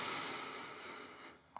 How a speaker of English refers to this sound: Then on the next breath in, we're going to tense the abdominal muscles. So breathing in.